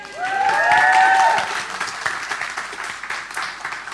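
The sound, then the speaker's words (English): A church audience bursts into steady applause for one of its members, with a few high whoops and cheers rising over the clapping at the start before the cheering drops away and the applause carries on. “And I'll just give you a little cheer”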